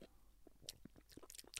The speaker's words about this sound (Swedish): Sluta. Sluta smaska. Mm. Nej men sluta!